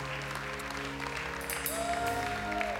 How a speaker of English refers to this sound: Come on, give me a hand clap of praise in this house today.